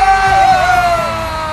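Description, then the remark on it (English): A loud, dense roar of a crowd cheering wildly as Cody Lee is announced the season's winner of $1 million and a headline show in Las Vegas, with a steady high whistle-like tone riding over the noise before the cheering eases slightly. “The crowd goes wild!”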